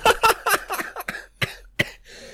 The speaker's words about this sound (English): So, folks, I'm sick, in case you haven't noticed. I'm not just a 30-year-old smoker who just now coughs and laughs like that.